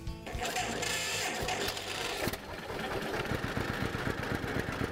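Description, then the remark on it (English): A 1947 John Deere G vintage two-cylinder tractor engine runs in North Central Illinois, loud and steady, with a rhythmic low chugging pulse under a broad mechanical clatter. No one speaks. “This is a 1947 G John Deere.”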